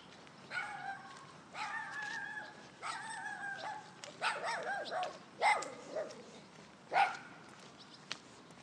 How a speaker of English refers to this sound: That dog barked at me last night.